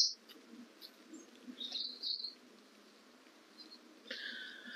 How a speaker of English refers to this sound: Very pretty bird noises now as we're getting further away from the road.